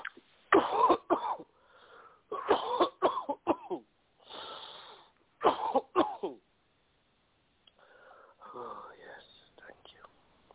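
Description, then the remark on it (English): Coughing comes in three harsh clusters, each a quick run of coughs, with a long, deep inhale between them and softer breathy, whispery sounds trailing off at the end. “Deep breath and cough.”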